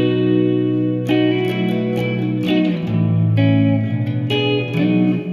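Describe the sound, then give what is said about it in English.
An electric guitar plays sustained, ringing chords through a lush, shimmering modulated reverb, with a few fresh strums blooming into a wide, wavering wash of sound. No voices. “Mod reverb.”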